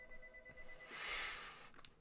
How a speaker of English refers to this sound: That's your landline going off.